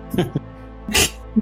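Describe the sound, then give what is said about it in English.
A person fakes a sneeze with their voice: a short voiced intake, then one loud, breathy "choo" burst, with nobody else around. “Achoo!”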